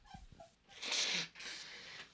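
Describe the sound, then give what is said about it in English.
Someone blows their nose in two honking, hissy blasts, a loud half-second burst followed by a slightly softer, longer one, after a few faint soft sniffs. No one speaks. “is blowing your nose now. I hope everybody can hear that.”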